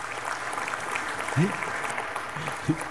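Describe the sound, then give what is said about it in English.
An audience at the Hudson Campus claps in a steady, dense patter of many hands after hearing that over 1,200 kids attended Vacation Bible Camp. The applause holds evenly throughout, with a couple of brief voice sounds breaking through. “You gotta wait, don't clap anymore until I tell you to.”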